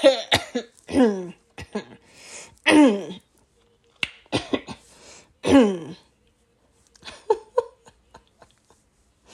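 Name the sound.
coughing and throat clearing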